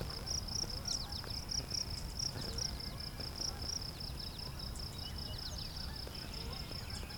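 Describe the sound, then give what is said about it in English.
Crickets chirp steadily in a meadow at the south end of Beverly Swamp, a continuous high-pitched trill with rhythmic pulses, while faint bird calls and a low background rumble sit underneath. “We're in a meadow here in the south end of Beverly Swamp. Lots of crickets here too.”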